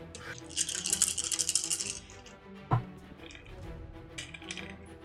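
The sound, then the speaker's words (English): Dice rattle and clatter across a hard surface in a quick burst of bright clicks, followed by a single sharper knock and a few scattered taps as they settle. “Roll for initiative.”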